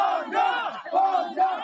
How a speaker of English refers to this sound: Tuesday night, students from Anhui Medical University in eastern China gathered on the campus. They began shouting the word vacation, asking for permission to leave campus earlier for winter break.